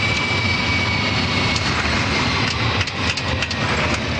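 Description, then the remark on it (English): A large jet aircraft of about 150 tons roars loudly as it touches down on the runway at Kai Tak airport, talked down by an air traffic controller; a dense, steady engine rush with a few brief rumbling bumps partway through and no voices. “just below the airport control tower at Kai Tak, one man directs the delicate operation of talking 150 tons of aircraft down onto the runway.”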